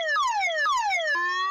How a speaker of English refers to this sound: Steve, can we get the sound of a siren here?